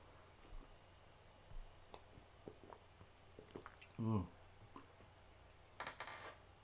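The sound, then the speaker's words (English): Someone sips wine: faint wet mouth clicks, then a short, louder gulp midway, followed by a breathy, hissing exhale near the end. Quiet overall, with no talking. “Let me sip on some of this wine.”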